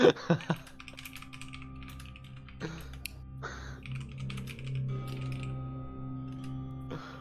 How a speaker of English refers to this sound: The typing intensifies.